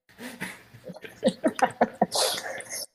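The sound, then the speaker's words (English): A person produces a rough, throat-clearing fake cough as an ad-lib on a rap track, a voice imitating hacking up phlegm in several short, fairly loud bursts, ending in a breathy rasp. “let me not fake cough”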